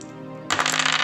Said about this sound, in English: Let's see, I don't have 6 six-sided dice, so I'll roll 3 at a time. The first set of 3d6.